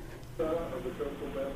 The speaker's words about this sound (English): It sounds like there's, I don't know, like some kind of distortion.